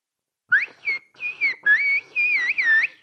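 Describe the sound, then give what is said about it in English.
Whistled Turkish: a series of clear, loud whistled tones that glide up and down in pitch, grouped into short phrases with brief gaps, mimicking the rhythm of spoken sentences, whistling 'Islik dili konusuyoruz' ('we are speaking whistle language'). “And how about we speak whistle language?”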